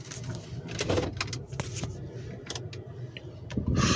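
A car engine turns over and settles into a low, steady rumble, with scattered clicks and rattles, then swells louder in the final moments, as the car is started to be moved. No one speaks.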